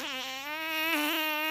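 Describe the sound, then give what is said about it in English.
A single sustained fart sound effect, added in post-production, buzzy and raspy with a slight wobble in pitch, lasting over a second, loud, with no voices. “Maybe I can add a fart noise in post-production.”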